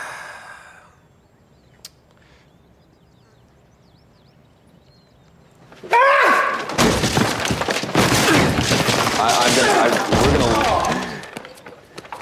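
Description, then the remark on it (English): A hush, then an abrupt burst of loud, chaotic crashing and smashing, presented as AOC breaking her way out through a door and a wall to the Capitol, pounding on for several seconds before cutting off. “That's AOC breaking her way out of the door, out of the wall to the Capitol.”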